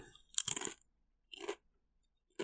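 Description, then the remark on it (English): A loud crunching bite, followed by two shorter crunchy chews after brief silences, crisp and sharp against an otherwise quiet background with no talking. “Second ASMR crunch.”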